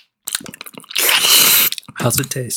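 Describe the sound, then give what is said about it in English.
Wet, smacking mouth sounds of someone sucking on a cough drop: a few quick clicks and slurps, then a loud sustained slurp lasting about a second, followed by a brief voice. “I'm just going to be sucking on a cough drop.”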